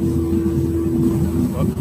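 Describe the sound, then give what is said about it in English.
A loud, steady droning hum of an airplane flying over an apartment, a low engine tone that holds constant throughout without breaks or changes in volume. “A plane flying over your apartment. Maybe. It got really loud with a humming noise.”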